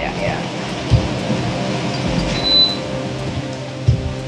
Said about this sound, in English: Oh, let me turn off the air conditioner, too. It's that's running. That's what it is.